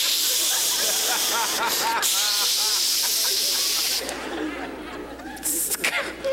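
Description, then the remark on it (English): A voice makes a long, loud hissing noise imitating a can of Raid insecticide sprayed to kill bugs, with brief chuckling laughter mixed in partway through before the hiss trails off in bursts. “I was going to start running through the jungle in a loincloth and a couple of cans of Raid and just kill all the bugs I could.”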